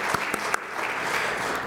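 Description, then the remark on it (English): A church audience at a Sunday morning service applauding together, a steady wash of many hands clapping with a few sharper individual claps standing out near the start, moderately loud and sustained throughout. “As we come up to the 2 year, let's applaud that. That's worth an applause.”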